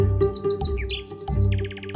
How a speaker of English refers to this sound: in the midst of England's Nightingale season about the transformative experience of creating songs in collaboration with the Nightingale